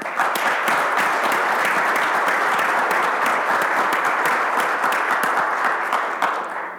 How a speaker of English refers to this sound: So please give yourselves a round of applause.